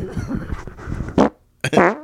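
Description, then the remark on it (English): A long, wavering, sputtering fart noise rises to a loud blast, goes quiet for a moment, then a second loud, buzzy burst follows. No one speaks. “My mic smells like shit now.”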